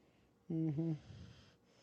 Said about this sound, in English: Even … is snoring next to me. He's a deep sleep, the boy. My goodness.